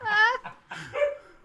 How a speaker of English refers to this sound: No, don't make the dogs bark. Jeez, we've had a quiet night so far.